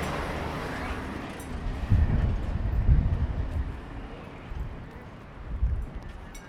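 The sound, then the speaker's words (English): A train rumbles past in the Mojave Desert while riders on mules wait for it to pass. It makes a steady low roar with a few heavier rhythmic thuds that swell and fade, mixed with windy outdoor noise. “During 100 mules walking the Los Angeles Aqueduct, we were on the mules heading through the Mojave Desert, and we had to wait for a train to pass.”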